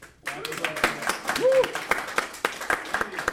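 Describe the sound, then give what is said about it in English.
Scattered applause from an audience at an anthology reading event, a patter of uneven, sharp claps that starts abruptly and continues steadily, with a murmur of voices and a brief vocal sound mixed underneath. “What that means is we can force people to applaud.”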